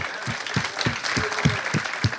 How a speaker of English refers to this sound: More than a golf clap, not bogey, not par. Come on, clap your hand like you mean it.